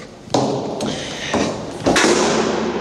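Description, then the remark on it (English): A heavy door bangs shut in an echoey hospital stairwell, its boom ringing off hard walls, with a few other loud thuds around it and no voices. “Sorry for the loud door slam. I'm in the stairwell, so it's kind of echoey.”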